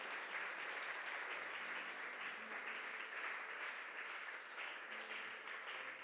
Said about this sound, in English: Come on, would you give God a hand clap of praise real quick?